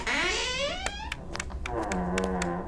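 A creaky old door swings open with a long, groaning hinge squeal that slides down in pitch, broken by sharp clicks and ending in a lower, wavering creak.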